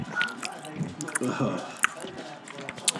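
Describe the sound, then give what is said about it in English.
Wet, squishy chewing of jambalaya right up against the microphone, with sticky smacks and sharp little clicks in an irregular rhythm, loud and intimate. “Just make sure you get your mouth up to the mic when you're eating it.”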